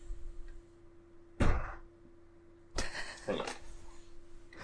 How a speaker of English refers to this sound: And this door won't stay.